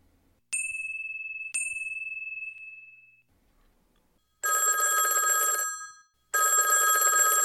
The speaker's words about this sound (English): The phone rang again.